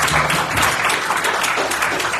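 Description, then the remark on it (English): An audience breaks into steady, dense applause one morning for its young people and their directors, many hands clapping together at an even loudness for a couple of seconds, with no voices standing out above it. “So we applaud you all this morning.”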